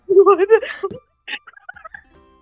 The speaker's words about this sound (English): Then you hear poof, poof, poof, poof, and then you hear just the sound of clucking and running around.